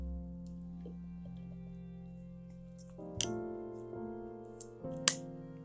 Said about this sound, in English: Take a sip of water here before I continue.